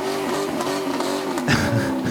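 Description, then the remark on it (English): Engines of a small KKK motorcade, including an S10, rev steadily as they pass counter-protesters at a park, their droning pitch rising and dipping in waves, with a harsher, louder burst of revving partway through. No one speaks. “After revving what their engines past the counter-protesters, you have an S10.”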